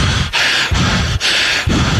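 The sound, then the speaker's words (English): Someone breathes heavily and urgently, with loud ragged inhales and exhales alternating about twice a second, acted out as a comedic impression of a stressed movie actor in distress, with no words spoken. “Anyone listening at home can do this. It's just heavy breathing.”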